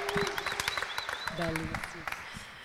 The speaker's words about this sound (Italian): Poi parte quell'applauso spontaneo che tanto aiuta poi buonasera. A rompere il ghiaccio.